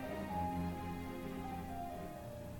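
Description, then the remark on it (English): Soft, steady rain patters against a window in a continuous hiss with no distinct drops standing out, layered over a low, sustained droning hum. No voices are present. “The sound of rain pattering on the window made Henna not want to crawl out of bed and face the evening.”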